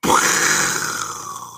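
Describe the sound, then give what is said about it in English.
A voice makes a loud, breathy explosion sound with the mouth: a sudden burst that rumbles and hisses, then slowly fades over about a second and a half. “May I do an explosion like this?”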